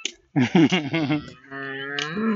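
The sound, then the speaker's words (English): A cow that has got loose from its farmers moos in two parts: a few quick, wavering bellows first, then one long, steady, drawn-out low moo that rises slightly at the end. It sounds fairly loud, with no talking. “So, I'm about to come to those farmers who just realized one of their cow is loose.”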